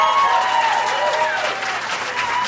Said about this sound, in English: Clap for Emily Gordon. She'll be here the whole show.